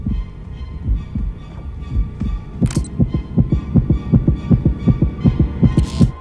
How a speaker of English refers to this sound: So, yeah, first off, the heartbeats in the background of this part is one of the great examples of the dramatic suspense that this movie has. I mean, heartbeats are a very common way to do this, but, like, during this, my heart started racing, too.